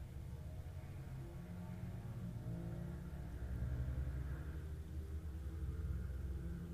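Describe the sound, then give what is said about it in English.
A small petrol engine drives past, its steady low rumble and mid-pitched whine swelling slightly in the middle before easing off, loud throughout with no talking. “Oh, and there goes a small petrol engine.”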